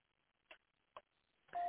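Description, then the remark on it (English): A phone line cuts in and out: two short crackling bursts over faint line hiss, then a louder, steady electronic tone that starts abruptly near the end. No one speaks. “I hear the phone going in and out.”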